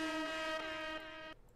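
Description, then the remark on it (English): One loud, sustained air horn blast with a brassy, buzzing tone holds steady for over a second, then cuts off abruptly. No one talks over it. “Let me hit him with the air horn because he's awesome.”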